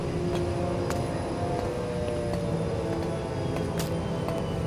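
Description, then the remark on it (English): A helicopter lands on the roof of a building, its steady, loud engine roar and rotor drone a dense, continuous rumble with faint sharper ticks, and no voices. “As Scarlet lands a helicopter on a roof of a building where Astrid can meet Colonel White.”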